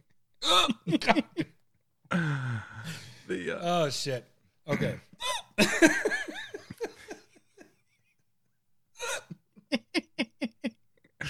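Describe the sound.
Repeated short, sharp hiccups mixed with giggly laughter and a few spoken words, ending in a quick run of small, evenly spaced hiccup bursts, moderately loud.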